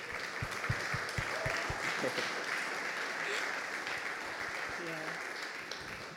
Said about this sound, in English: You know, first of all, I think that deserves a huge round of applause.